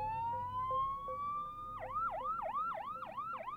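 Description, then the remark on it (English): The siren of an ambulance coming down a dirt road rises in a long wail, then switches to a fast, repeating yelp, loud over a low rumble of engine noise, with no one talking. “Then we see an ambulance coming down the dirt road.”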